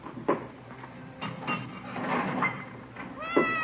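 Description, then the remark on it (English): A Siamese cat named Pepper meows for food, several short plaintive cries over a few seconds, ending with a louder, rising meow, before being fed milk; no one speaks and there's a faint background hum. “It's a nice cat you got there. Siamese?”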